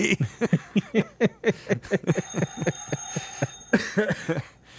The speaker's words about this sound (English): Would somebody answer the phone? All right, enough of that. I accidentally touched the soundboard, but yeah.